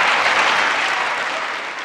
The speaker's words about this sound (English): That's President Joe Biden at his State of the Union address on February 7th. The jeers and applause you're hearing break along partisan lines, as you might expect.